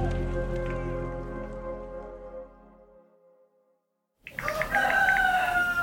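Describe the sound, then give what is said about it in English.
A rooster crows loudly after a sustained, fading musical tone and a brief silence, its strained call cutting in sharply near the end. “Oh, I hear a rooster.”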